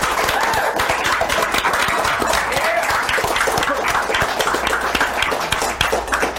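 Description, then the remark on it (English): An audience at Valiant Summit 2017 applauds steadily for Eric Heiser, dense overlapping claps at an even, fairly loud level for several seconds without a pause, and no voices come through. “Let's have a big round of applause for Mr. Eric Heiser.”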